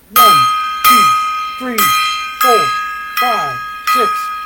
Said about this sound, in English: And we're going to do a 10-gong salute to both of them.